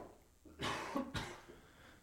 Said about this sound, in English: Now, I had a little cough there.